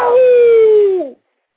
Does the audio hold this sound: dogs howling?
yes